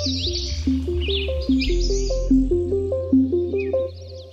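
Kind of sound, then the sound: bird, birds chirping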